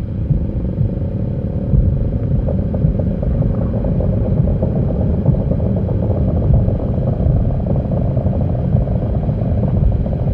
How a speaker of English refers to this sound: We're listening to field recordings of a glacier made by the sound artist Chris Watson.